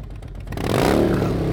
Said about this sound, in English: So you're staring at their hog, and all of a sudden you hear the rumble and roar of an engine.